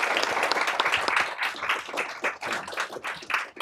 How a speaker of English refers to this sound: I want to first give a round of applause to this wonderful panel. Thank you all very much.